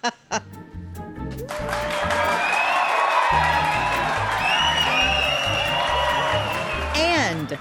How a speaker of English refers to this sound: The sound of our cheering fans means it's time for listener comments.